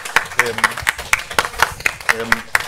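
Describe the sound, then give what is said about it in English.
Steady, evenly spaced hand claps ring out fairly loud, about a dozen in quick rhythm, an audience applauding three presenters after a morning session, with faint voices murmuring underneath. “Let's give them a round of applause, everybody.”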